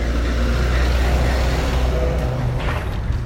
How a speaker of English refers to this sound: There's a truck coming, so.